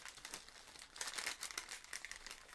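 Steady crinkling and crunching of gift wrapping paper being balled up by hand, a dense run of crackly rustles lasting a couple of seconds with no talking.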